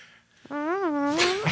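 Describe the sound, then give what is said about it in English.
A single drawn-out voiced sound about a second long, a person doing a strange group fart sound, imitating a fart with a wavering, buzzy tone that rises, dips, and ends in a breathy hiss, fairly loud. “But you, but you love doing the strange group fart sound, don't you? Do it.”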